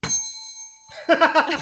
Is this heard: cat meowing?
no